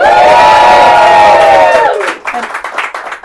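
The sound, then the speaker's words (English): A live audience at the Wood Thrush Woods Writing Retreat cheers and whoops loudly when asked to make noise, sustained voices blending into a roar for a couple of seconds, then breaks into scattered clapping and shouts that fade unevenly. “coming at you live, sort of, in front of an audience here at Wood Thrush Woods Writing Retreat. Make noise, people.”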